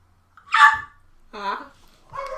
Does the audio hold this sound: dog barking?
yes